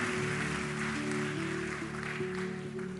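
crowd, audience clapping

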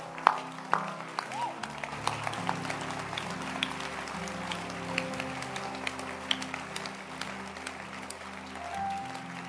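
crowd, audience clapping hands

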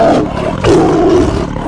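animal, tiger roar

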